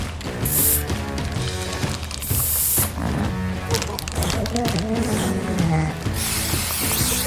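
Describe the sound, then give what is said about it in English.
Short hissing bursts from an aerosol marker spray can used in conservation work to mark a pup blue and yellow, three quick sprays spaced a couple of seconds apart, over a busy, continuous background of layered tonal sounds and voices. “We've got a bag of marker spray here and a healthy can-do attitude.”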